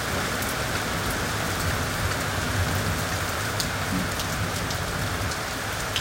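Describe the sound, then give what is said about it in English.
Steady rain falls on leaves in a dense, even patter of countless small drops, fairly loud, holding constant throughout with no voices or other sounds. “It's the imagining of rain falling on leaves, sound of thunder, the flash of lightning, the earth soaking up the rain.”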